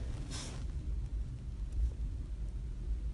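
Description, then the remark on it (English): A deep, steady low rumble of thunder from a storm coming in rolls on throughout, heard on a campus in the morning, with a brief hissy burst early on and no voices. “That might be a storm coming in.”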